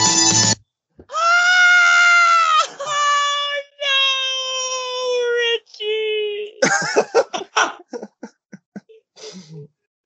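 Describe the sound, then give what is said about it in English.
Several long, loud, strained screams in quick succession, high and wavering almost like a bleat, then breaking off into a few seconds of choppy talking. “Yeah, you had one last scream.”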